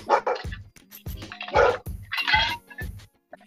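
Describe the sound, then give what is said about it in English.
A dog named Oshi barks repeatedly in quick, uneven bursts, about five or six sharp barks, with no talking in between. “Oh, we also enjoy dogs here. Is that Ducky I hear?”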